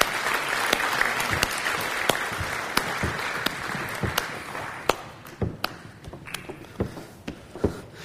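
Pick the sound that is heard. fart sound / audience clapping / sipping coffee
audience clapping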